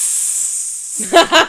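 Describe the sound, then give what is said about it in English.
A person makes a steady, drawn-out snake-like hiss for about a second, loud, then briefly starts talking. “It's just a snake.”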